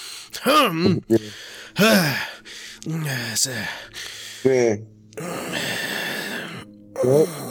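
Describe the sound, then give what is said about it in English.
A man imitates the straining grunts and heavy, huffing mouth breaths of a man in a bathroom stall: a run of short voiced groans, then a long noisy exhale and another grunt, loud with no words. “He just walks in, and before he even like sits down to do his business, he's already getting the and he hasn't even taken the pants off, and he's already grunting like.”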